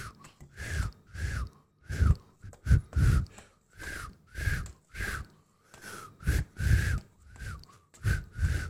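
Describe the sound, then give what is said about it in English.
A person imitates a cricket by whistling through saliva, giving a quick series of breathy, whistled chirps, about a dozen and a half short bursts in a steady rhythm, fairly loud. “That's the best goddamn cricket impression I could do. Guy, line up your fucking saliva like this and whistle.”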